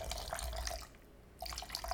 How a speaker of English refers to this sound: A little heavy on the vodka pour. That's how we like it around here.